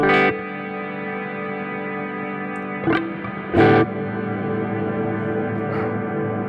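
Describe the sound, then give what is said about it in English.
A sustained, harmonically rich guitar tone played through a plate reverb effect rings out with a wash of lush reverb, punctuated by a few brighter strummed or picked accents that bloom and decay into the tail. No voices. “So I pushed a few buttons, and now I've got a plate reverb, and I'm visualizing the audio output.”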